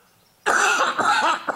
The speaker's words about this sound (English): Got a bit of a nasty cough, haven't I? So dramatic you are. You preempted a cough.